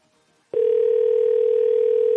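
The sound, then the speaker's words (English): After a moment of near silence, a loud, steady telephone tone switches on and holds unbroken to the end as someone calls a company's phone number, a continuous electronic hum with no voices. “Okay, think this might be their phone number.”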